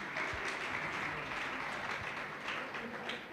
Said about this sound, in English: Don't you agree with me, church? Then clap your two hands for Jesus.